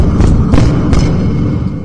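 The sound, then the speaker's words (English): Three dull, muffled bangs on a wall, made from behind the wall behind a washing machine, unevenly spaced across about a second, over a steady low rumbling background with no voices. “Can you hear me banging on the wall?”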